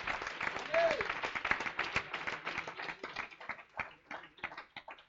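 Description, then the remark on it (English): A church audience claps their hands to the Lord in dense, sustained applause, many overlapping sharp claps forming a steady crackling roar that thins out slightly toward the end. “Let's clap our hands to the Lord of glory.”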